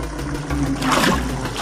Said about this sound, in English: Oh, but the water is rising.